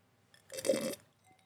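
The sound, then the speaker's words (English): A single short slurping sip of Chardonnay wine, a soft wet hiss lasting about half a second, with faint mouth sounds around it and no talking. “Pardon me, I had to take a little sip of the Chardonnay.”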